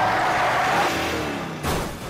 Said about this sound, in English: And then you hear some ruckus, and it sounds like that car that you were dropped off in, it speeds away in like a crash or something like that.